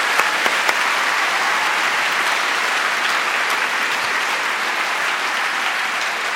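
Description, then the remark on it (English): Steady, dense applause from a large audience at a student prize ceremony, honoring the students, their parents, teachers, and mentors, a continuous wash of many hands clapping at even loudness for several seconds, with a few sharper claps standing out at the start and no talking. “Let's have one more round of applause for all of our students, their parents, teachers, and mentors.”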